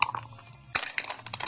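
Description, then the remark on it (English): Dice clatter and tumble across a hard surface, a quick burst of sharp, rattling clicks after a brief pause, moderately loud, with no voices. The dice are rolled for Watford's turn in a game. “Well, the dice are on the pitch and it's Watford to go first.”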